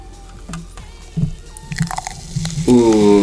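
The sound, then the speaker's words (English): Liquid pouring into a glass, with irregular wet splashes and trickles that build in density, ending in a louder, sustained ringing tone as the glass fills. “And get that pour.”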